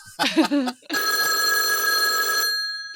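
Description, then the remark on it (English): A voice speaks briefly, then a helpline telephone bell rings loudly in one sustained burst of about a second and a half before cutting off. “The helpline's ringing.”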